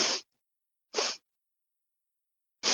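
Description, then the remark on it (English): Three short, breathy sniffs, each a quick hiss of air drawn in through the nose, spaced unevenly with silence between them and no talking. “And he sniffs again.”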